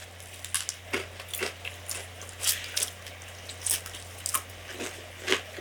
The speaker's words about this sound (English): Every once in a while, one of them sneezes or burps or something, but mostly it's just this. A sort of companionable chewing.